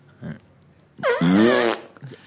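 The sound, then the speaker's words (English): One loud, drawn-out fart lasting about a second, with a buzzy, wavering pitch that rises and then holds. It stands mostly alone, with a couple of faint, brief sounds before and after. “What is your fart to mean? Is this a fart mean?”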